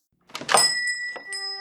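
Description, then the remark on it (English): A door rattles open and a shop bell above it jingles, its bright metallic ringing lingering and shimmering for a moment afterward, fairly clear, with no voices. “The bell over the door jingled,”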